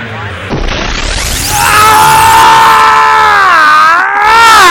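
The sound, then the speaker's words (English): A man bellows at the top of his lungs in an empty office in Boulder, a long, strained wordless yell that rises and wavers, held loud for several seconds with a brief break near the end. “There's nobody here at the CMC Boulder offices, so I can yell as loud as I possibly can.”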